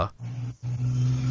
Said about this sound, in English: The car is on the road. I can't help that they're passing by and that they're loud.